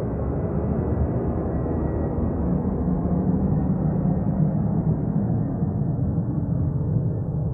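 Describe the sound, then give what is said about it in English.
A steady, low rumbling roar of an airplane passing overhead, one of repeated overflights in an area with no airport, holding at an even loudness for the whole stretch with a slight dulling toward the end, no voices. “The state is maintaining presence, flying over repeatedly in airplanes, not taking off.”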